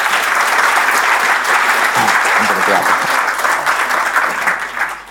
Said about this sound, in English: So why don't we just give another round of applause to our panelists.